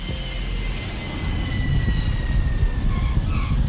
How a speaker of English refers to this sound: And so that's when the plane starts to come down in Miami.